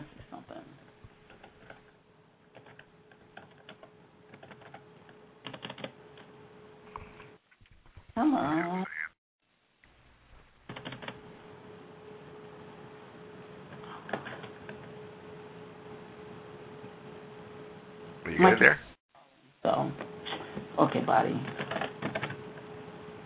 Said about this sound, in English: Come on. Here you're typing.